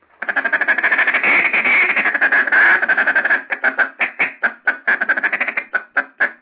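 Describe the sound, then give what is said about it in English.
A duck call blown in a short second feed call: a quick, rolling chatter for a few seconds, then breaking into a string of short, evenly spaced clucking notes. No one speaks. “Second feed call shouldn't be as long as the first feed call because you done showed your feed call.”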